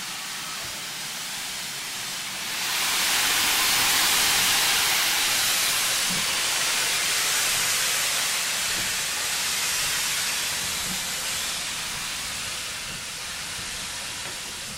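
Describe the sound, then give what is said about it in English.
A Great Western Manor class steam locomotive, number 7822 Foxcote Manor, running with tank engine number 5199 on a foggy morning, lets off a loud, sustained hiss of steam that swells after a couple of seconds and roars steadily on, with faint mechanical knocks underneath and no voices. “The weather forecast said it'd be foggy this morning in localised patches, and they're certainly making their own fog from their steam.”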